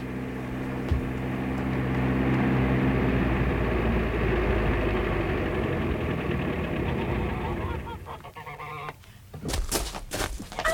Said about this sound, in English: Hey, listen. What is it? It's a car.